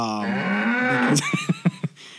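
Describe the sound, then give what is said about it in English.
A single long, low moo rising slightly in pitch, made by a human voice imitating a cow, followed by a few quick bursts of laughter. “A flock of cows? There was a flock of moosin.”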